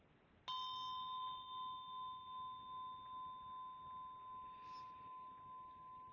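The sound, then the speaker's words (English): A single meditation bell is struck once during a meditation session and rings out in a long, steady, clear tone with a gently pulsing shimmer, sustaining almost without fading over soft background hiss. “So welcome yourself home, your home and present at the sound of the bell.”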